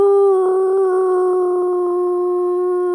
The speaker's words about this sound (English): The singing seal. It's that magical singing seal on the Eastbourne seafront.